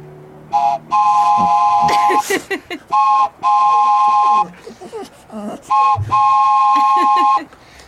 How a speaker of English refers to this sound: This is actually kind of cool. We actually picked this up at a tractor supply. It's called the wooden train whistle.